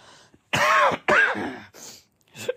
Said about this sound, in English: Excuse me. I can't shake this cough.